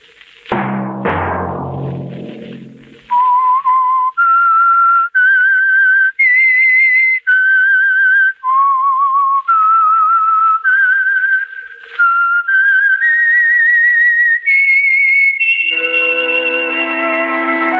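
A short, loud musical sting gives way to a clear whistled melody of long, sustained notes stepping up and down, ending on a held note with fuller accompaniment underneath; the theme of The Whistler radio program, sponsored by Signal Oil.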